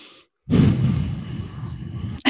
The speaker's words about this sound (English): That's a heavy breathing on the mic.